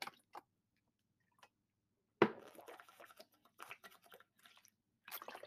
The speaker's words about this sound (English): I'm taking a sip, guys.